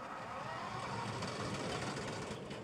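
A wood chipper attached to a truck, being fed bundles of witch hazel two or three at a time, runs its engine in a steady, unbroken mechanical drone with a dense rumble and hiss. It holds at an even, fairly loud level throughout, with no voices.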